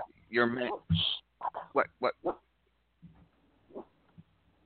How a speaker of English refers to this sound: I have a new guard dog. He's barking at people. All right. He's barking.